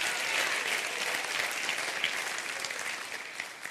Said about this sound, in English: Clap your hand right now. Hallelujah.